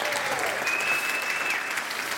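Sustained audience applause, a steady dense patter of many hands clapping at even loudness throughout, with no voices standing out above it.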